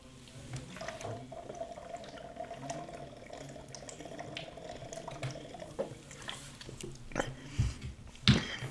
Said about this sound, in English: Yeah, you guys just saw me pull out my water bottle and just saw me drink my water.